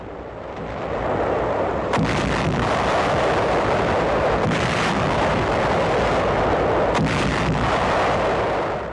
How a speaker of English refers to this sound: 6th Army forces en route with the 7th Fleet to northern Luzon. Objective, to take the American flag back to Manila. U.S. guns battle Jap planes and two Jap destroyers. A 3-day naval bombardment of the entire Lingayen Gulf area.